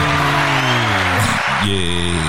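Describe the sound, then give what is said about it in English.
A loud canned applause effect played on STL Beyond FM radio: a steady wash of crowd noise with cheering and whooping voices on top, lasting a couple of seconds without a break. “Yeah, false applause.”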